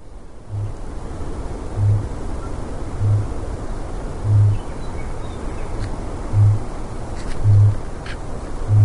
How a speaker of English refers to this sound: That noisy was none other than the booming sound that the cockapoo bird makes. Mm-hmm. K-A-K-A-P-O. It's also known as the owl parrot, a species of flightless nocturnal parrot endemic to New Zealand.